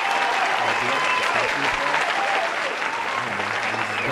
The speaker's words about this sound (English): I was ready with the applause.